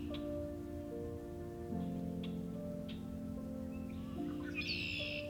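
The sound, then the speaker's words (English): Harsh, buzzy red-winged blackbird calls ring out over a steady hum of ambient noise, with a trilling conk-a-lee-like phrase near the end and scattered sharp chips, recorded in mid-March at Coots Paradise in Hamilton, Ontario. “The males show bright red and yellow epaulets upon their wings, in stark contrast to their otherwise charcoal appearance.”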